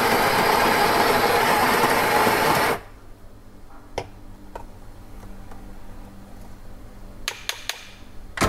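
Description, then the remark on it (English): A coffee grinder grinds coffee beans for an espresso shot, whirring loudly with a dense, steady grinding roar for about three seconds, then cuts off abruptly, leaving a quiet stretch broken by a few sharp clicks and taps. “We grind the coffee beans.”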